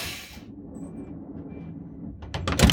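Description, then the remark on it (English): A train door, its close button pressed, slowly slides shut over a steady low rumble, ending in a cluster of sharp, loud knocks as it meets the frame. Nobody speaks. “The door slowly drew closed.”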